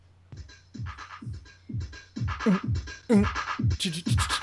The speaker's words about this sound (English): This is a straightforward four to the floor house get down. Beat.